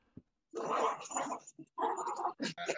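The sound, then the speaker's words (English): Dogs snarl and growl at each other in a loud scuffle, with rough bursts of growling broken by short pauses and a few sharp yelps. “That's my dogs fighting, if you're wondering.”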